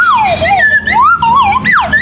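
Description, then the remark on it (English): A traffic whistle is played: a loud, continuous whistle warbles up and down in pitch, sliding in siren-like swoops for about two seconds, with no voices. “I'll play my morning traffic guy whistle.”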